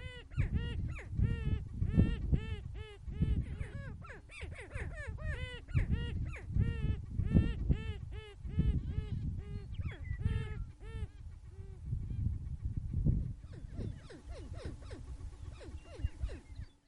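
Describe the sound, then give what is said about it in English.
A chorus of greater prairie chickens calling in courtship season on a Sunday morning at the Fort Pierre National Grassland in central South Dakota: overlapping cackles, whoops and hooting notes fill the scene continuously, some loud, others softer, with no talking. “We leave you this Sunday morning at the Fort Pierre National Grassland in central South Dakota, where it's courtship season for greater prairie chickens.”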